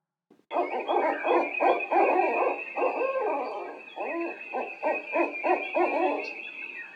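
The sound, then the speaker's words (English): An owl hoots repeatedly in ancient woods with frosty fallen leaves, a steady series of low, resonant calls, clear, with a faint airy background like a quiet night forest and no voices. “Here and there, you hear the lonely hoot of an owl.”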